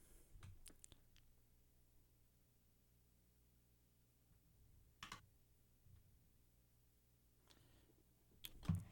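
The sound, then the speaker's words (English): Sparse, quiet keyboard clicks as a player types in a quiz answer: a quick cluster of keystrokes at the start, then long silent gaps broken by a few isolated taps, all faint with no talking. “is typing.”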